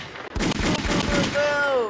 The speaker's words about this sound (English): Gunshot.